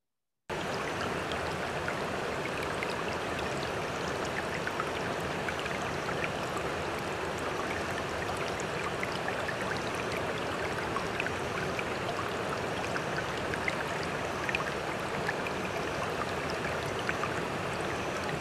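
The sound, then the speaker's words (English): Water streams steadily and continuously for the whole stretch, a dense rushing and splashing with no voices and no pauses. “And in the meantime, have a glass of water.”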